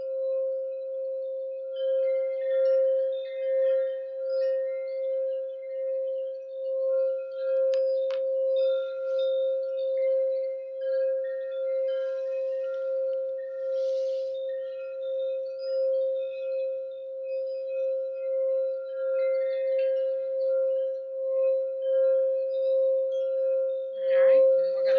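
A singing bowl rings with one steady, sustained mid-pitched tone that holds for the whole stretch, faint shimmering overtones floating above it and a slight wavering pulse in loudness.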